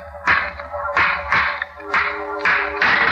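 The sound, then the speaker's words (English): A stone smashes against an old rusty lock on a tomb door in about five sharp, loud metallic blows at uneven intervals, each clank ringing briefly before the next strike, with no voices. “Smashed the lock.”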